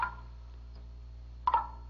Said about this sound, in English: It's water. It's dripping off that big leaf. Oh, man. It's water at last.